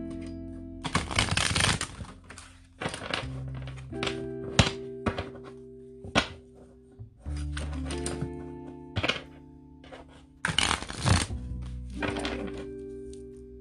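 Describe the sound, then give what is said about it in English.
A deck of tarot cards being shuffled: repeated riffling bursts and soft slaps, broken by firm thunks as the deck is squared or tapped on a table, with no one speaking. “Let me shuffle these up real fast.”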